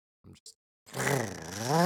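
A car door opens and closes with a short dull thud and a quick click, then the car's engine starts, roaring to life and revving loudly with a rising and falling buzzy pitch.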